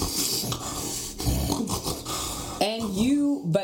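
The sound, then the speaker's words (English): A voice imitates the heavy snoring of someone after two glasses of wine: a long raspy, rattling snore in a few pulses, ending in a voiced, groaning sweep that rises and falls in pitch. “One glass of wine snore is fine. I can deal with that. Two glasses of wine starts to go like this.”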